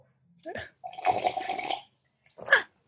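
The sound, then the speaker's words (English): A loud slurping sip of hot coffee, wet and drawn out for about a second, framed by short breathy sounds before and a sharp exhale or swallow after. “hold on, let me have a little bit of sip of coffee there. Should we make it an ASMR?”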